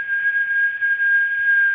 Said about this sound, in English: Okay, here's the illusion. While it's playing, I want you to determine which ear you're hearing a high, consistent tone. It's this tone.